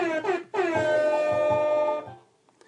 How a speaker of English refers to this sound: Let me get some air horns.